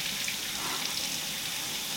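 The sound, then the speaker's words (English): A steady stream of water pours for a couple of seconds, a continuous bright splashing hiss at moderate volume with no voices. “Water pause.”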